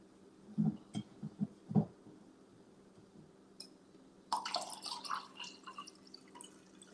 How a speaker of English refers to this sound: Fix my drink, my water.